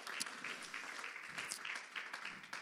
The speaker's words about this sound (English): If we could, go ahead and give the Lord another hand clap of praise as you sit down tonight.